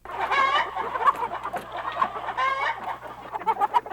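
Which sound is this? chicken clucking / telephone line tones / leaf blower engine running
chicken clucking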